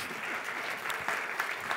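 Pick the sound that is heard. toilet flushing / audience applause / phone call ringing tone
audience applause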